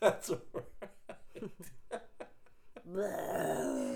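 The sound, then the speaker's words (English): A run of short, choppy chuckling bursts gives way to a sustained, buzzy raspberry, a voice loudly imitating a fart for about a second at the end. “Oh, God, he just farts.”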